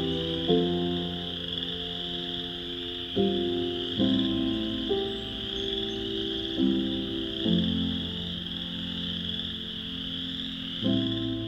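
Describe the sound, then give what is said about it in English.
A dense, unbroken chorus of chorus frogs trilling together, a steady high-pitched buzz of many callers, with lower droning tones shifting every few seconds underneath. “Frogs, such as these chorus frogs, are also well known for their loud, encompassing calls and songs.”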